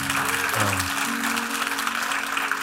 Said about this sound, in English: And church, let's just give her family just a round of applause for what God is doing.